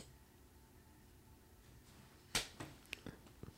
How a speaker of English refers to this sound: Knee slapper. Yeah, we'll do a knee slapper.